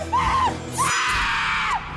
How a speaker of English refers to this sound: Is that somebody screaming?